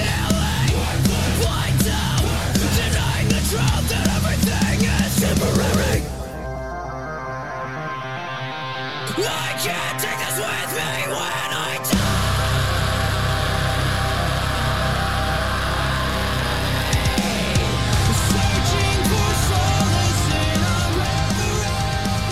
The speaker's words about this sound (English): Kind of the typical metalcore thing, right? Yeah. Screaming and then singing. Melodic.